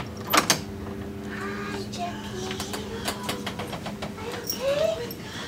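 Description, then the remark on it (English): A hospital door, the door on the left, swings open with a couple of sharp latch clicks, a drawn-out creaking hinge and rattling hardware, over a low steady hum with faint murmuring in the background. “And she chooses the door on the left.”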